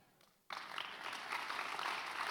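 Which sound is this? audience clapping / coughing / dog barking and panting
audience clapping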